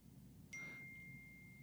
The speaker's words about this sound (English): What the hell is this? I don't know what's going on. My phone was just dinging.